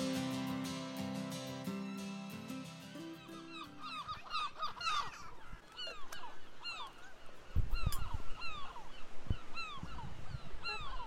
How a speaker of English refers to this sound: The unmistakable sound of a gull and also the seaside, wouldn't you say? Living by the sea. Yeah, absolutely. So I am here down on Brighton Beach